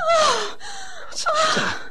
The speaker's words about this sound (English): What did you scream for? There's a snake out there. What? A snake. A huge thing. It's at the top of the stairs.